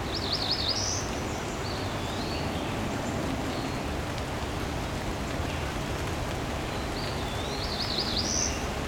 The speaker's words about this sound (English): This is my first time encountering this one. Cerulean warbler.